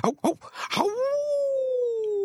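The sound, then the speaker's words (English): A person imitates a dog: a few short yelping barks, then a long, steady howl that holds its pitch and slowly sinks, fairly loud. “Howl.”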